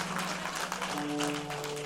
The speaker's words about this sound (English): And, you know, you can slow clap that in.